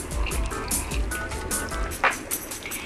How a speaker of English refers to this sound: Okay, hold on. It's just... I need a sip of my tea just a minute.